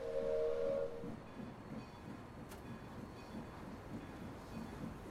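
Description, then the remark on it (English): A train's wheels rumble and clack steadily along the tracks as the train slowly begins moving out of a station, after a brief high whistle at the start; the rolling noise stays even, with no voices. “She waves goodbye to the people on the platform as the wheels of the train begin slowly moving on the train tracks.”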